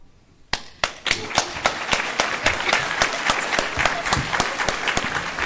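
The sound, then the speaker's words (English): A crowd in a courtroom during a trial bursts into applause after a quiet start, with a few sharp lead claps giving way to dense, sustained clapping that stays loud and steady to the end. “Your Honor, motion to strike the applause.”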